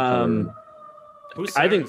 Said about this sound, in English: goodness, those are sirens in my